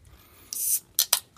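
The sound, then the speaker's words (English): A short hissing rasp is followed by two quick, sharp taps on the top of a can to keep it from fizzing over when opened, each crisp and bright, with no one speaking. “Like, you can shake up a can, give it three good solid taps on the top, or just a few, you know.”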